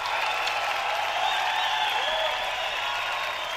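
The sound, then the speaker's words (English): A crowd applause sound effect on the Sports Done Right show, a dense wash of clapping with some cheering mixed in, holding at a constant moderate level throughout with no pauses. “Definitely crowd up out of their seats”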